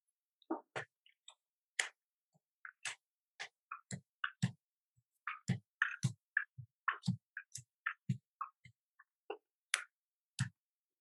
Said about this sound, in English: We will legitimately shuffle the cards.